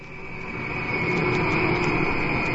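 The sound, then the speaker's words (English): A jet airplane roars on takeoff from Tel Aviv, a loud, steady engine rumble with a high whine on top, swelling slightly over a few seconds. No voices are heard. “Bonstein's plane leaves Tel Aviv on time, 2 hours late.”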